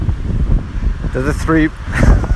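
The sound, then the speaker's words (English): A truck or bus rumbles past on a road, a deep, steady roar that swells toward the end, with a brief burst of voice partway through. “When you get a truck or a bus coming by on this road, shakes everything, shakes the trees.”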